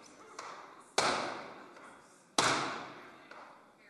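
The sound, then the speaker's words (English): A cooper hammers hoops onto a wooden barrel while working around and around it: two loud, sharp blows about a second and a half apart, each ringing out and fading, with lighter taps before and after. No one speaks. “So this is the Cooper's Dance, where you have to go around and around and around the barrel.”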